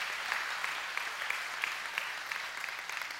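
An audience claps in praise to the Lord, a dense, steady wash of many hands with a few sharper individual claps popping out, sustained at an even level for a few seconds with no talking.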